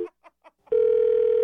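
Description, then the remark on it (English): A few short, soft blips give way abruptly to a loud, steady telephone dial tone after the other party hangs up the call, a single low-pitched hum that holds unbroken to the end. “I think we got disconnected there, and I was just telling you a joke about not blowing my nose on your address again.”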